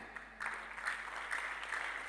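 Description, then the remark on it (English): An audience claps together during a sermon in a steady rhythm, roughly two claps a second, with the sound of the crowd blending into a continuous wash of noise. The clapping is fairly soft. “Oh, you're clapping and sick in the house right now.”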